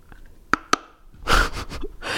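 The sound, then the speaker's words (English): Someone bites into a hard chip of cola nut: two sharp, bright cracks a moment apart, followed by a run of louder, rougher crunching bursts as the chewing continues, with no talking. “Okay, so I got this little chip of cola nut, and now I am going to chew it and see what the flavor is.”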